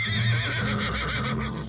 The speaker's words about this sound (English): Stalls line either side of the space, and creatures occupy most every stall. Horses.